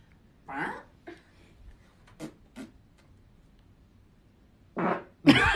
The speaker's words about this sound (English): Guess the fart. No, that wasn't close. Guess my fart.